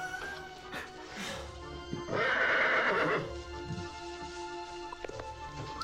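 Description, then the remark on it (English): A wet horse gives a loud, shrill whinny lasting about a second, with hooves clip-clopping intermittently before and after it. No one speaks. “Why is the horse so wet?”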